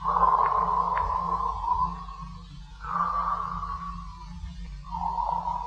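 A man breathes slowly and deeply in his sleep, three long airy swells of breath rising and fading over a steady low hum, with no talking.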